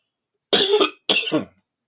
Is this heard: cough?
yes